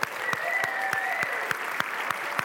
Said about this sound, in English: And if us sitting down would just kind of cheer them right now and clap.